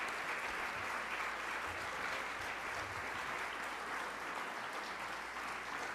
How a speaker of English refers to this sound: Thank you. Thank you guys so much. I wasn't standing here for more applause, though I did appreciate that.